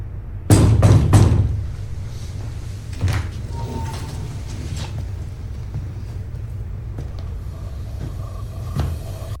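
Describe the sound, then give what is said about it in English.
Twins pull a door open with a loud scraping rush in the first second, followed by a steady low rumble and a few faint clunks, otherwise quiet. “Yeah, so the twins open a door, and there's a very large man.”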